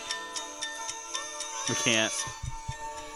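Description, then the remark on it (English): A ticking clock sound played from a phone ticks steadily at a quick, even pace, each tick crisp, while a brief voice sounds over it midway and fainter thumps follow near the end. “Okay, that's just a ticking time bomb.”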